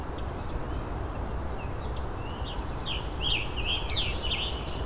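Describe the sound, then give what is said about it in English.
A hairy woodpecker gives a quick series of sharp, high calls in the latter half, heard over a steady outdoor hiss with a few fainter chirps earlier. “the hairy woodpecker again.”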